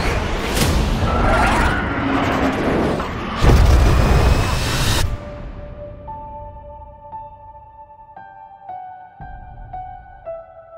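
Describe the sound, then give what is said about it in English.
Jet planes roar off a runway in a loud, rushing whoosh that surges to a heavy blast, then cuts away to a softer, steady tonal hum with stepping pitches. “You've probably just heard 2 minutes of planes whooshing.”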